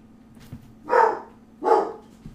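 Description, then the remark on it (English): A dog barks twice in quick succession, reacting as if somebody were knocking at the door: two loud, full woofs about half a second apart, with a faint background hum and no talking. “We've got children in the playroom, and the dog is reacting, thinking somebody's knocking at the door.”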